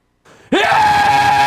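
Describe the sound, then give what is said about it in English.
A man lets out a single loud, sustained yell that starts abruptly after a brief breathy lead-in and holds steady at full volume. “can you yell really, really loudly? Just yell.”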